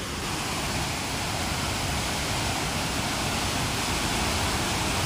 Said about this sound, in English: Can you guys hear this waterfall? Here, wait, let me walk a little bit closer. Listen to this and just let it wash over you.